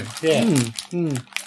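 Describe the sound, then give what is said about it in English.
Crinkling of a packet of nine biscuits being opened, a few crisp rustling bursts of plastic that come and go while a voice talks over them and partly masks them. “Or I could just open them. There are 9 biscuits.”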